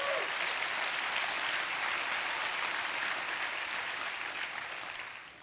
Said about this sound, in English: Come on, you can clap your hands if you believe that.